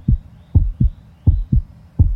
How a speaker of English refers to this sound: For example, chipmunks have a normal heartbeat of 350 beats per minute, which we abbreviate as BPM. That's way faster than a typical human heartbeat of 60 to 100 BPM.